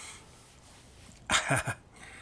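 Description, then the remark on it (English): A neighbor's dog, heard from a back porch, lets out a quick, excited cluster of two or three sharp barks, loud against an otherwise quiet background hiss, then falls silent. “And, the neighbor's dog getting a little crazy there.”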